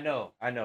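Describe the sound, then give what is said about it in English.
A puppy lets out two quick, high yelping barks back to back, fairly loud, with a brief pause between them and no talking. “I know, puppy. I know. I had to bring him in here.”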